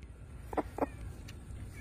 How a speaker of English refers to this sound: There's an Easter egger. And this is good. You ever seen a chicken laugh? This is Francis. Ready?